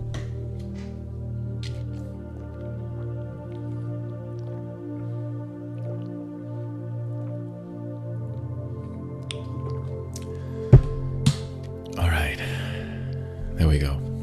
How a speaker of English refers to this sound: I'm going to take a quick sip of water. It'll just take me a couple seconds and then we'll get started, right?